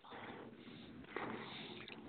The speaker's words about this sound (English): I think, is that you breathing like that? No, that's not me,